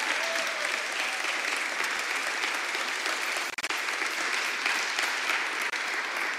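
An audience claps steadily, a dense, even wash of many hands that holds at a constant loudness throughout, with a brief dip near the middle before the applause carries on.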